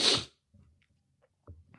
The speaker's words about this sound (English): Excuse my sniffling. This sinus infection in my head has me the way fucked up.